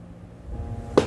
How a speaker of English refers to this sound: If this chair stops squeaking.